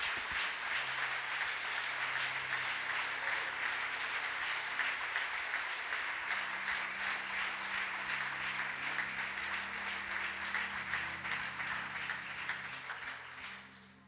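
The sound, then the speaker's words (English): A crowd claps their hands to thank God for his word, in steady, sustained applause for about fourteen seconds, dense and even throughout with a low hum of sound beneath, then tapering off at the end. “Would you clap your hands and thank God for his word?”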